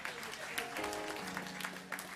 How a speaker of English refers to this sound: Let's give our mothers a good round of applause for them.